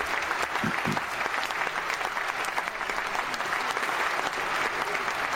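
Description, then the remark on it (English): A burst of canned crowd applause from a sound-effect button fills the whole stretch, steady and dense with many hands clapping at once, loud, with no one speaking. “I should have just hit the applause when I hit the cough button and just, you know, let it apply, just, you know, voluminous applause.”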